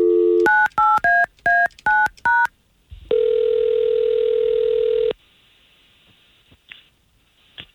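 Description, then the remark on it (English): Six quick touch-tone beeps sound as a phone number is dialed by morning show hosts of radio station K92.3 in Central Florida, followed by a single steady ringing tone lasting about two seconds, then near silence with a few faint clicks. “we're going to try to call him right now, okay?”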